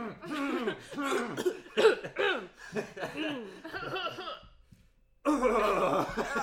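A run of close, voiced coughs mixed with laughter, bursting in quick uneven clusters, then a brief pause before another loud stretch of coughing and laughing.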